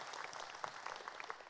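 An audience claps steadily in a dense burst of applause for a speaker's 25 years of marriage, many hands overlapping into a bright, crackling wash with a few sharper individual claps standing out.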